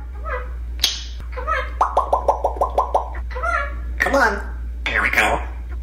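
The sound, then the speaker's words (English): Two parrots chatter back and forth in garbled, speech-like voices, mimicking human conversation and teaching each other phrases like "tickle, tickle" and "peek-a-boo", with a quick run of evenly spaced clicking pops midway. Clear over a steady low hum. “these are some other parrots teaching each other to have a conversation”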